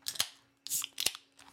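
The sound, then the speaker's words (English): A Bud Light beer can being cracked open: a couple of sharp metallic snaps, each followed by a short bright fizzing hiss, with brief pauses between and no voices. “You gotta get the crack.”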